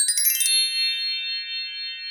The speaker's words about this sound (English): did you hear the chimes? The holiday chimes.